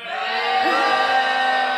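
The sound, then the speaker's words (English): A disgusted audience lets out a sustained, loud chorus of booing, many voices blending into a steady jeering roar that holds at an even level throughout. “The audience is disgusted. They start booing.”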